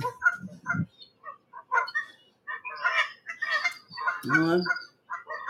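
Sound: canada geese honking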